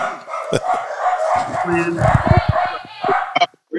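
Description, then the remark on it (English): A dog at a house in Decorah barks and yips in a short, uneven burst of several sharp calls, mixed with people talking over the noise. “Do we edit the dogs out?”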